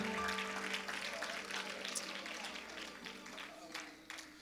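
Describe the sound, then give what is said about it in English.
An audience claps together in a dense, sustained burst of applause, a hand clap of praise to the Lord given while seated, many hands blending into a steady crackling wash at moderate loudness, with a faint murmur of voices underneath. “Would you give the Lord a hand clap of praise as you are seated?”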